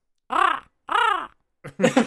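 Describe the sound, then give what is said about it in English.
A person imitates a raven, giving two drawn-out, arching croaks followed by a rougher, choppier caw, loud and close with short pauses between. “Now it's time for Raven's Calls.”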